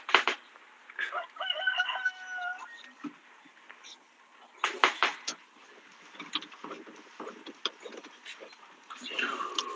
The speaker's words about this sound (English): Pardon the bird. I hear a rooster. Yeah, I live on a farm, there's birds.